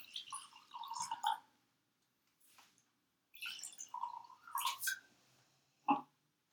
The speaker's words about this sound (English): This is a Malvasia, but yeah. We could call it like Two Palms Picket, which could be a nice brand for our pickets. I'm pouring, and I want you to smell it first, because I think that's...